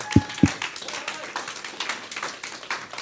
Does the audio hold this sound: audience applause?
yes